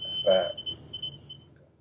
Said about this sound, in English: Oh, sorry, folks. Yeah, smoke alarm goes off if it's hot. No. It's incredibly annoying.